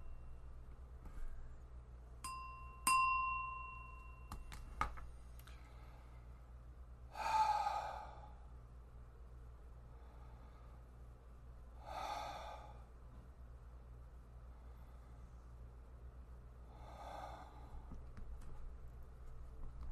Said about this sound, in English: We're going to take three deep and heavy breaths, and then we will begin the practice.